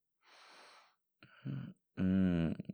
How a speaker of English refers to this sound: Not too tired, I'm just yawning. It's okay if you're yawning too.